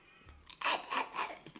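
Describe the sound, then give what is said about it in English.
A loud crunch as someone bites into a crisp snack, followed by a few quick crunching chews in rapid succession, with no talking. “You didn't have to chomp it, for fuck's sake.”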